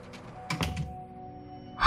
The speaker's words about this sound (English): Could you shut the door on your way out, please?